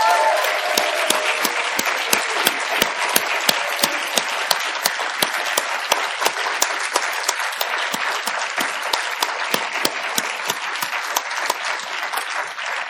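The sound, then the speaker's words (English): A crowd applauds steadily for over ten seconds, many hands clapping in a dense, even wash with sharper individual claps standing out, loud, no talking; an audience applauding the readers at a reading event. “Let's give a round of applause for all of our readers.”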